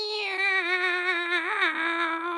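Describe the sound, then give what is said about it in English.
A person voices a drawn-out cat-like meow, one steady, fairly loud tone with a slight wobble that dips in pitch near the end, with no other sounds around it. “Meow. I'm sorry, I don't have any fish this time.”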